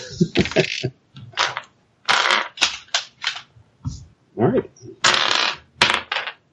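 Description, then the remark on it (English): Dice clatter and tumble across a hard table in several quick, loud rattling bursts, with a voice briefly speaking between the rolls. “Right, what do I do with my damn dice?”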